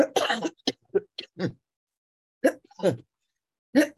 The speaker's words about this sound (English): Excuse me. Got this ridiculous cough that they're trying to. It's an asthma cough. That's what it is.